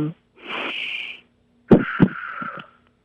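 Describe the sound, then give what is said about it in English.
A deep, congested breath drawn in with an airy hiss, then a raspy, wheezy breath out with rattling catches, taken on request over the phone so the breathing can be monitored. “Yeah, just a deep breath in and a deep breath out, and I'm going to monitor your breathing.”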